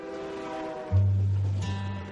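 A train horn sounds a sustained, chord-like blast, then a deep, loud rumbling drone takes over as the train rolls by in Calvert, Texas, a railroad town about an hour's drive southeast of Waco. No one speaks.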